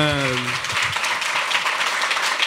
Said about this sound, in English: Please clap. Yeah, that's amazing.